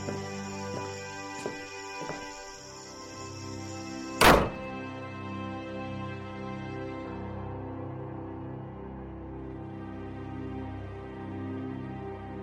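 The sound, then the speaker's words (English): A door slams shut once with a single heavy thud partway through, set against a steady low droning hum that continues throughout. No one speaks. “She pulled me in and shut the door.”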